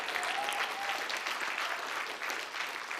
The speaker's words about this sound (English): Hallelujah. Yeah, give the Lord a clap.